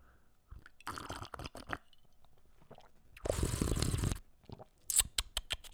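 A slurping sip of Monster energy drink from a cup, with ice rattling and clicking against the sides in short bursts, then a longer loud gulping sip before a few final clinks.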